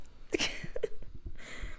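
A run of harsh, explosive coughs comes in quick bursts, several in a row, fairly loud, with no one speaking.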